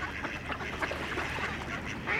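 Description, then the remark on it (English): Several ducks quack repeatedly in a busy, overlapping chorus, with a steady outdoor hum underneath and no talking, round the corner from Rue de Rennes. “Right, let's leave the ducks and head round the corner to Rue de Rennes”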